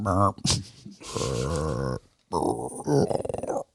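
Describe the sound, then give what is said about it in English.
A person imitates a deer grunt with a few low, throaty voiced bursts, one drawn out over a second, the last breaking into quick rhythmic pulses, fairly loud with no words spoken. “I don't have any deer grunts on here.”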